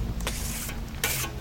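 A trowel scrapes and smears sticky plaster paste, taken from a hawk, across the wall of an intern bunkhouse in two broad, hissing swipes, with a low steady hum underneath and no talking.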